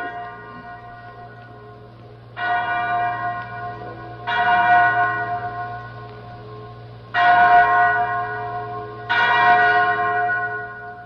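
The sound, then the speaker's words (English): A chapel bell rings four times in a slow, uneven rhythm, each loud clang ringing on with a long shimmering overtone before the next strike, heard clearly with no talking. “that's the chapel bell.”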